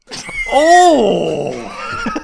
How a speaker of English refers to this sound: This is an African bull elephant.